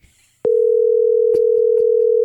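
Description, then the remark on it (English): A telephone ringing tone while placing a call to the speaker's sister comes on abruptly after a faint rustle, a loud, steady unbroken hum held to the end, with a few soft clicks from the handset scattered over it. “While I try and get her on the phone.”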